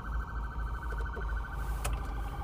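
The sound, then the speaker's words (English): An ambulance siren wails steadily as the ambulance tries to pass through traffic, over a constant low rumble of cars and trucks passing by without giving way, with no one speaking. “There's an ambulance trying to pass through traffic.”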